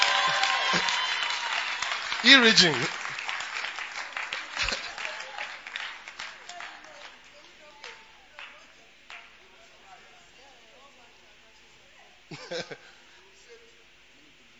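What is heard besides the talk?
audience clapping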